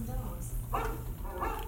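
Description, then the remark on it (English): A dog named Rover lets out two short, yelping barks mixed with whimpering, over a steady low background hum. “She didn't mean real dogs.”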